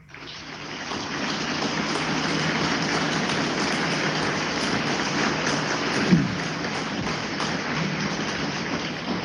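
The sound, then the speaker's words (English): A crowd applauds steadily for about nine seconds for the standing members of the McPherson Area Veteran Committee, a dense, even patter of many hands clapping at once with no voices heard above it, fading slightly at the end. “And I'm going to ask the members of our McPherson Area Veteran Committee to please stand and let's give them a round of applause.”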